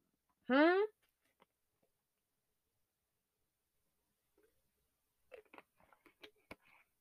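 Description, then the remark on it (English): A loud gulp of juice with a brief throaty, rising tone, followed after a pause by soft wet clicks and mouth noises as if still drinking. “I'm just sorry if y'all heard a loud gulp. I was drinking some water, some juice.”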